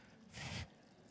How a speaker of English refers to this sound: So that's basic science, siphoning water or diesel, whatever you get up to.